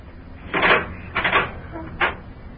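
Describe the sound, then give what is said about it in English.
An unlocked kitchen door off a back porch is pushed open in three short, scraping bursts, the last one briefer and sharper. It is fairly loud, with no voices. “Well, kitchen door wasn't locked.”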